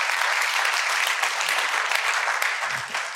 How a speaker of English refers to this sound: a round of applause.